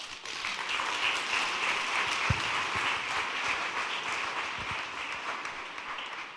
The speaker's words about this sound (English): Clap your hands.